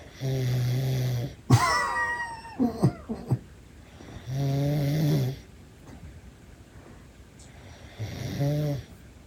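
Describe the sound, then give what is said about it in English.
Loud snoring of a woman, three long, rumbling snores spaced a few seconds apart, with short squeaky, whistling breath sounds in between. No one talks. “I was snoring really loud”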